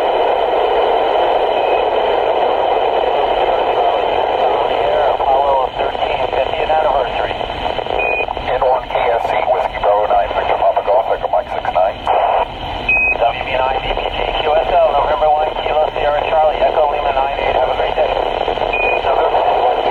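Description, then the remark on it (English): Hissy, band-limited satellite radio static from an amateur radio contact via the AO-91 satellite runs throughout, with a faint transmitted voice buried in it and short, clean Quindar-style beeps cutting through the noise a few times at irregular intervals. “Yeah, I'm amazed how, you know, there's all that static at the beginning, and you could hear that little Quindar tone. You could hear it right through the static.”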